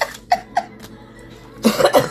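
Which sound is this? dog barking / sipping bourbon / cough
cough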